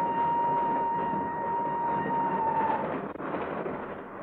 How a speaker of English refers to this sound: Not until the train started to move from the platform.